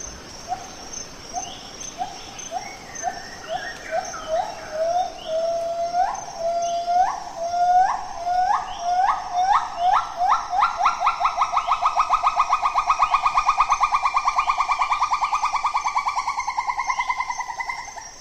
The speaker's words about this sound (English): Standing below a Bornean gibbon, it's about 40 metres above me. This is one of the wake-up calls of the rainforest. It's dangling by one arm from the canopy. And this one's a female, you can tell by the call that it's making.